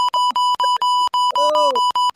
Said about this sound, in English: Okay, that's so loud. Oh my god. I beeped you out. I've censored you.